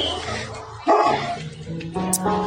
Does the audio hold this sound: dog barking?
yes